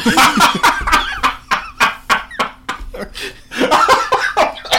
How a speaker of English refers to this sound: You're making me cough.